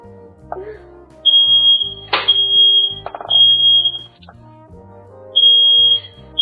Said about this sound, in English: Is it boring to have the smoke alarm go off? No.